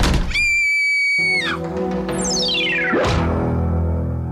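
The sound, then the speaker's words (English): A dramatic sound-effect sting for a "Crime Corner" segment: a shrill, scream-like wail and a descending whoosh over droning music, then a single heavy door slam about three seconds in before the music rings on. “For Crime Corner, like a door slamming or like a scream.”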